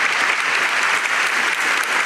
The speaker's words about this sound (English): So. Good stuff. I'm going to give you a applause.